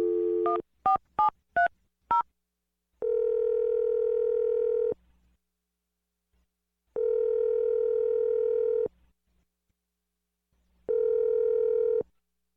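A brief phone dial tone gives way to five quick keypad beeps dialing a number, then three long, evenly spaced ringing tones separated by silent gaps. Clear and close, with no talking.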